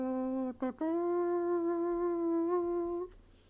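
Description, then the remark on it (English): A voice imitates a trumpet with a loud, brassy buzzing tone: a quick stuttered start, then one long steady note held for about two seconds before it cuts off. “That wasn't a trumpet. That was me. I'm that talented.”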